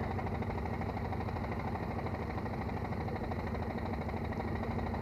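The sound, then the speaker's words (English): A veteran car's engine idles steadily while the car is stopped and held up, a continuous low rumbling drone with a faint rhythmic vibration and no break or change over the few seconds. “The heat, the engine overheats when you're stopped too long.”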